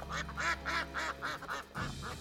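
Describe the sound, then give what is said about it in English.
Eider ducks calling, five or six quick, nasal, cooing notes in a steady rhythm, over a constant low rumble of background noise. “But no predator is more terrifying to a mussel farmer than the eider duck.”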